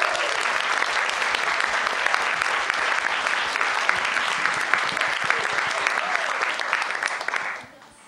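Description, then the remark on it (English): An audience claps loudly and steadily for several seconds, dense overlapping hand claps, then the applause quickly fades out near the end. “Should we give a huge round of applause now for Kitty?”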